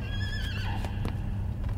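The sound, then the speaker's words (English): A horse whinnies with a wavering, high-pitched call while hooves clop irregularly on hard ground, all set over a low, steady rumble of background noise. No one speaks. “They're feeding it a horse?”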